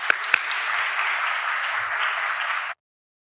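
A crowd applauds in a steady, dense wash of clapping that holds at an even level for nearly three seconds, then cuts off abruptly into silence. No one speaks.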